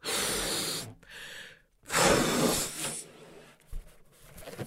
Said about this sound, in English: So blow up your balloons and tie a knot in the end. Make sure it doesn't deflate.